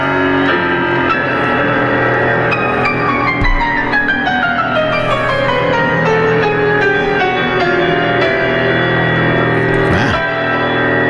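Piano played live on stage on Wednesday night, loud and continuous for the whole stretch, with rich sustained chords ringing out with reverberation and no voices over it.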